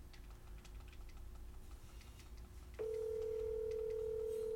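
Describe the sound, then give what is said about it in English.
A phone line connects: faint clicks over a low hum, then a steady, loud telephone tone starts partway through and holds unbroken to the end, with no one talking. “Calling.”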